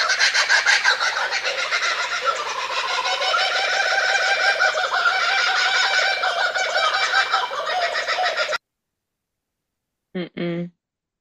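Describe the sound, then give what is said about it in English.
Several laughing kookaburras cackle together in a loud, dense, overlapping chorus that rolls on for about eight seconds before cutting off abruptly, followed by a brief spoken voice. “So I found a recording of two of them, or more than one, for you to hear.”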